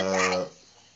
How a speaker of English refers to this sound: Damn dog all up in the mix and shit.